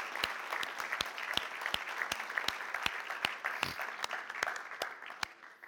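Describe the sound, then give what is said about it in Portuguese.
An audience applauding the Lord after a prayer, a dense wash of clapping with a strong, regular beat of claps in unison running throughout, full, without anyone speaking. “Aplauda o Senhor que Ele merece.”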